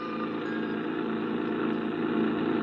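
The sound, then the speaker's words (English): The engine of a creaky old rented truck drones steadily as it drives to Barnesboro, a continuous rumble with a rough mechanical hum that holds even throughout, with no voices. “I rented a creaky old truck and headed for Barnesboro.”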